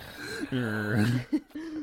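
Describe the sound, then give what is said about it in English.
A dog snoring: one long, low, buzzing breath that rumbles for most of a second, followed by a couple of short snuffling snorts. No one speaks. “Sorry, I just need to say, I'm not snoring. This is my dog next to me going.”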